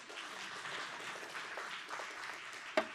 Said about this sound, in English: All right, I can clap again. Keep going.